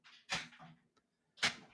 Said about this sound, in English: It sounds like he's crawling into his dryer. And he got stuck. Pretty sure that's him banging on the door.